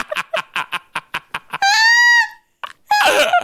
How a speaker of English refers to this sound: Why? Is that the intro? It's just you screaming? I think it is. I think that it was like episode 7 of our show, and that's how I introduced it. I just screamed.